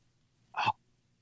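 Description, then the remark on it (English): A single short, sharp sneeze bursts out, loud and abrupt against an otherwise quiet background with only a faint low hum. “Excuse me. Bless you.”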